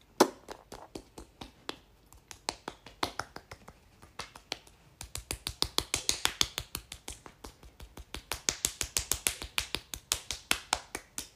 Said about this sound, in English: Just slapping my face, guys. Well, obviously. Not slap, slap, but... Right, that's our moisturising done.